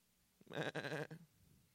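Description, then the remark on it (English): A single wavering sheep bleat, about a second long, rises sharply and fades against a quiet background, loud, with no talking. “Just hanging out with sheep.”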